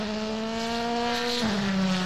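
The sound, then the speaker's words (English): A gymkhana performance car's engine holds a loud, steady high-pitched roar, then the note abruptly drops lower, like the car easing off or sweeping past, with no talking. “So this is going to be the next Gymkhana car.”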